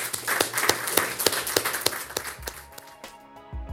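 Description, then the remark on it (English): Audience applause, a dense patter of many hands clapping at once, steady before thinning out and fading near the end as a soft tonal sound comes in. “Let's give Don a round of applause.”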